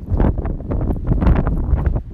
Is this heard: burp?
no